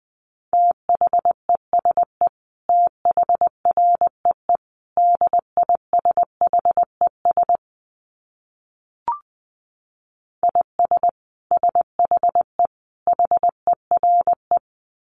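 Morse code sent at about 20 words per minute: a steady mid-pitched beep keyed into quick dots and dashes, grouped into bursts, with a pause and a single click midway.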